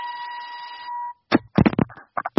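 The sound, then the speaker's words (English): A loud, steady electronic beep like a truck's reversing alarm holds one pitch for about a second, then cuts off and people start talking in short bursts. “It sounds like the Brinks truck is backing up to offer us a new deal for our podcast.”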